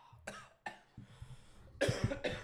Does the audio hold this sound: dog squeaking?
no